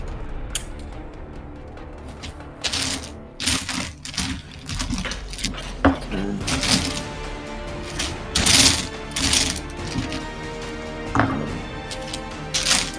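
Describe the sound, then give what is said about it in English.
A big handful of dice clatters and rattles in repeated bursts as they are gathered, fairly loud, with sharp clicks scattering across several seconds and a faint murmur of voices underneath. “That's just quite a lot of dice.”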